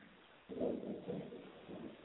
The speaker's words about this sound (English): I hear something. Yeah, that's thunder.